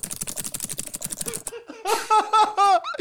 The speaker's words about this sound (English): And then frantically do some typing.